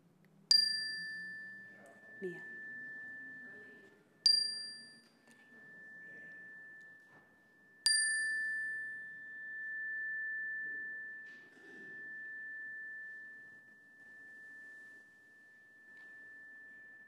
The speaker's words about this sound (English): At the sound of this chime, I invite you to say aloud the names of some of those who are on this earth journey with you.